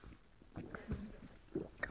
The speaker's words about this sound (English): Wow, is that loud? You heard that gulp?